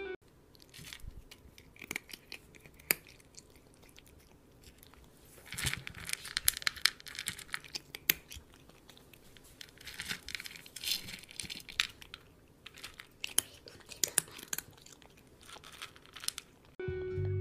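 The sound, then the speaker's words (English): A cat named Dipper eating from her food bowl: irregular, soft crunching and crinkly chewing sounds come in quick bursts and pauses over several seconds, with no talking. “She finished eating.”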